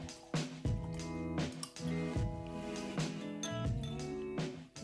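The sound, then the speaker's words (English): Wine glugs and splashes from a bottle into a glass, a steady pour broken by gurgling bursts and a ringing glassy tone, with no one talking. “All right, let's get pouring.”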